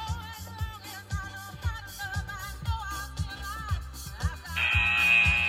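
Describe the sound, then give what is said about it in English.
Upbeat music with a steady thumping beat plays, then a loud, sustained electronic buzzer cuts in near the end and holds steadily over the music, signalling the start of a running interval. “So we're just about to start there, and you will hear the buzzer going of when you need to start.”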